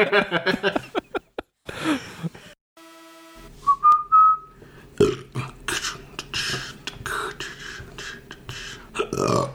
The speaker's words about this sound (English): Oh, so many burps. The more I burp, the hungrier I get.